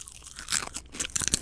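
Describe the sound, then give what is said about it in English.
Someone crunches into a roasted male rhino beetle, a quick run of dry, crackling bites and chews with sharp bright snaps, fairly quiet and with no talking. “Yeah, so first try your male rhino beetle. I'm going in.”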